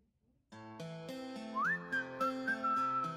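A pop track kicks in after a brief quiet start, with steady chords and a bright whistled melody that slides up and carries the tune, as used in a clickbait video trend showing a photo of Josh Hutcherson. The music is loud and upfront, and nobody speaks.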